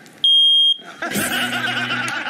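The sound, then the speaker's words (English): A single loud, piercing smoke alarm beep lasting about half a second rings out, then a burst of dense, noisy commotion follows. “the smoke alarm.”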